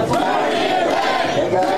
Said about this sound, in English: It's been rowdy, nothing violent, but a lot of profanities being yelled, a lot of people yelling for Trump.